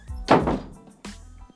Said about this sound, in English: shut the door? Thank you.